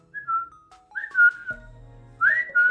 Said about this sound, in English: But I'm gonna see if my bird wants to say anything. Okay, come on.